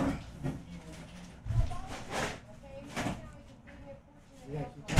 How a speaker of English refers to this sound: Can you close the door? Oh my god.